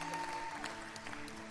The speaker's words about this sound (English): That's a shepherd. Clap for me. I'm a shepherd.